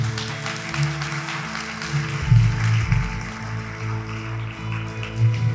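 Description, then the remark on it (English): A church audience claps hands as a clap offering to the Lord, a steady, dense wash of applause that lasts throughout, with low sustained musical tones underneath and no speech. “Can we give the Lord a clap offering this morning?”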